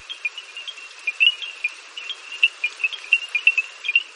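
A dense evening chorus of small frogs in Masai Mara National Reserve, Kenya, gives off bright, clicking notes like African stone xylophones in quick irregular bursts over a steady hiss of heavy rain during a storm, recorded from under a small wooden bridge. No voices are heard.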